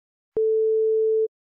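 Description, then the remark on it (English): A single steady electronic voicemail beep on the answering message of Hidetaka Miyazaki's office, a pure mid-pitched tone holding for just under a second with sharp clicks at its start and end, then silence. No voices. “When you hear the beep, hang the fuck up.”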